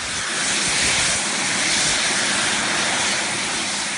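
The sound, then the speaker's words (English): Loud, steady roar of a couple of small experimental jet engines strapped to a man's arm and turned on, a broad rushing hiss holding at full power throughout without a break. “has his arm strapped to a couple of small jet engines, and then he turns them on, and you see the immense power of these engines, which look like they're about to knock him over.”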